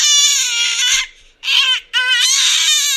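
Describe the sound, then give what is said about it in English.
A baby on its first night at home from the hospital wails loudly in three long, high-pitched bursts with brief gasping pauses between them, the cry strained and piercing throughout. “And then the last nominee is the first night at home from the hospital with the baby.”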